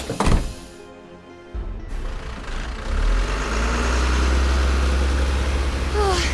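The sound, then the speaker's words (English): A heavy bus engine idles with a deep, steady rumble in front of a station, preceded by a solid thunk and mechanical clatter as the bus's side door opens. “Hurry, before it leaves. The side door's opening.”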